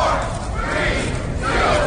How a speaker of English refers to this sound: So he actually got a bunch of people together, and all these people actually met up and randomly started having their stress scream.